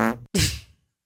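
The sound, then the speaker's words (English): A short, comic fart sound effect: a brief buzzy blast, a split-second gap, then a second, wetter, sputtering burst that trails off quickly. It is fairly loud, with no talking. “You don't want to be farting around using”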